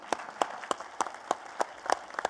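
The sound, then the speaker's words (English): Audience applause after a prayer at a religious service, for a couple who care for boys, with a steady, rhythmic run of sharp, loud claps standing out over a softer continuous wash of clapping, about eight distinct beats in just over two seconds, with no voices. “Let's hear it for them.”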